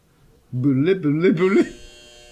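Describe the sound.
A wrong-answer buzzer, imitated by a voice as a loud, nasal buzzing blare that wavers in pitch for about a second before cutting off, followed by faint background noise.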